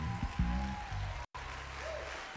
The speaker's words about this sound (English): One more time, give him a hand clap of praise. If you're blessed in the building tonight.